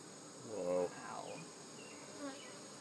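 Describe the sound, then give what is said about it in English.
A steady drone of many honeybees buzzing around an opened hive as a frame is slowly pulled out, with one bee's louder whine sweeping past near the start and fainter buzzing continuing throughout. “Now I am gonna pull out a frame if you guys want to see, and there I'm gonna do it nice and slow, but we'll have more bees come up at us, obviously.”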